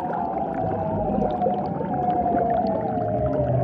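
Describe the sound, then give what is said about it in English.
An eerie underwater mating song of a male seal displaying to females: a long, sustained tone sliding slowly in pitch, steady and fairly loud over a dense, rumbling background with scattered clicks and bubbling. “The lady seals apparently couldn't get enough of these eerie sounds, which is why they evolved into such long, elaborate displays.”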